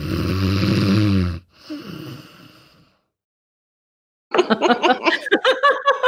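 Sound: snoring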